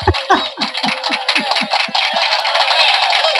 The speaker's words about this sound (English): You get a little applause button.